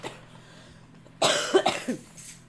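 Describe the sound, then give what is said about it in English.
A burst of harsh, raspy coughing from a person who has been smoking from bongs, several rough coughs in quick succession after a quiet moment, trailing off into a wheezy throat-clearing. “See, the bongs make me cough now and everything.”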